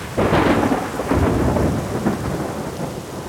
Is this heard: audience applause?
no